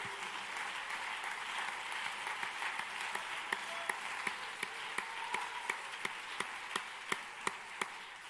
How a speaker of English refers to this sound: Could you clap your hands to the Lord one more time?